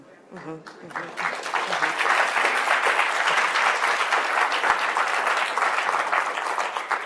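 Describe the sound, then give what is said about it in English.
A brief moment of a voice gives way to loud, sustained audience applause, a dense crackle of many hands clapping that swells within a second and holds steady to the end. “We need a clap meter for you, because you just...”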